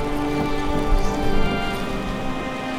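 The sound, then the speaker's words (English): A steady, dense wash of rain with a low rumbling wind underneath, holding a constant loudness throughout with a brief swell in the middle and no voices. “The winds are picking up again. This storm ain't over.”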